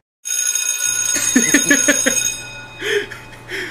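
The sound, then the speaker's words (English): A bell rings to mark the end of lunchtime, with a bright, sustained metallic tone, its high overtones shimmering steadily for a few seconds, with a low hum underneath and a couple of brief fainter sounds at the end. “Alrighty, lunchtime's over. Ring that sad bell.”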